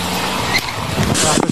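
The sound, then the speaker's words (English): A green sedan peels off with a brief screech of tires, engine noise surging over a rough, noisy background while voices shout in the mix, as the driver takes off and is chased on foot. “he's taking off on us.”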